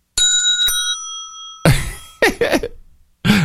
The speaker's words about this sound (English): my bell's sitting on the desk over here. If I put it closer to the microphone like this and tapped it, it would probably be more to his. Hey, mic. Listen to that. We have like a different tones.